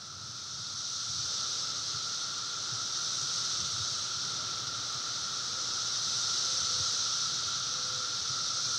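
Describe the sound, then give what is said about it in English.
A dense chorus of cicadas buzzes continuously, a shrill high-pitched drone with a fainter lower hum beneath it, holding steady in loudness for the whole stretch with no voices. “Are you hearing that? Have you heard the buzz? Everyone's talking about it. The cicadas are coming.”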